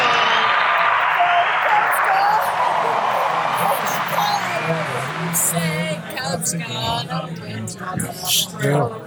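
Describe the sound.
A big crowd roars loudly, then many voices join in singing a Chicago Cubs baseball victory song together, the mass singing rising over lingering cheers and claps from within the stands.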